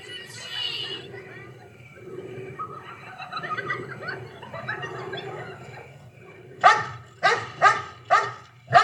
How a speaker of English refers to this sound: And in what will become the first of many attempts for a jump scare, a dog signals that we are viewing the world through the eyes of a dangerous man, Michael Myers.